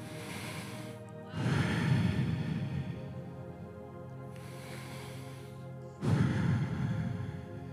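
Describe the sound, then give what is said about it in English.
Slow, deliberate breathing, with long airy inhales and exhales alternating in a steady rhythm of about four breaths, each one soft and breathy, no talking. “is that for centuries, es que por centuarios, rabbis have said, han dicho, that these four letters, y estas cuatro letras, sound like our, suenan como, sound like our breathing, suenan como respiramos.”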